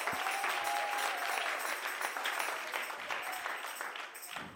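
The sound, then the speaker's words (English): A church audience claps steadily, a dense wash of many hands applauding together that stays loud throughout, with a faint tonal sustain near the start. “Come on, clap your hands.”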